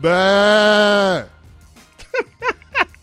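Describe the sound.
A person on an ESPN Radio show loudly imitates a sheep, letting out one long, sustained bleat, followed by a few quick syllables of speech.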